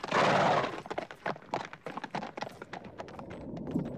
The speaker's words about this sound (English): Hearing at last the sound of hooves, he so deployed his magic power as to open a long cleft in the ice.